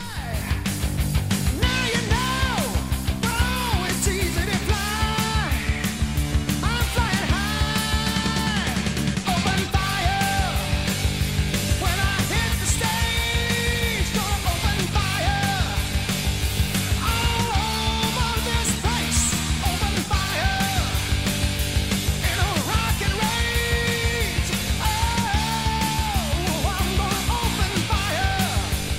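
A 1982 heavy metal rock song plays loud and dense throughout, with distorted guitars, pounding drums and a high, wailing male vocal line soaring over the steady driving rhythm.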